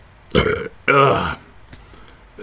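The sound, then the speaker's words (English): Two loud burps in quick succession, the second longer and more drawn out, followed by a few faint, brief sounds trailing off into quiet. “I don't know why they added that part in the comic where he just interrupts his sad monologue with a series of burps, but it's in the book.”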